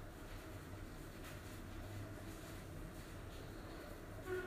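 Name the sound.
passing train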